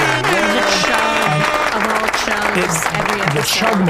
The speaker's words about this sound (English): Oh, we have one big moment that will be signified by all of the clapping and sound.